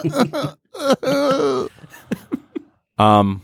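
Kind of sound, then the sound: human body sound, coughing and throat clearing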